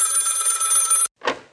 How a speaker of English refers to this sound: Oh, I bet that's Queenie now. Let's answer the phone and see if it is.